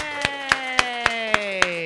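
Seven sharp, evenly spaced claps from what sounds like a single pair of hands, about four per second, over a steady humming tone that slowly drifts lower.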